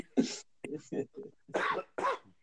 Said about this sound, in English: Yeah, but my throat's been bothering me the last couple of days. I've been coughing.